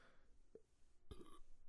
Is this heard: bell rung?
no